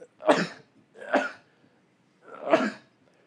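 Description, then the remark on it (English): Three sharp, breathy sneezes burst out one after another, about a second apart, fairly loud, with no talking in between. “Sorry, I had to sneeze.”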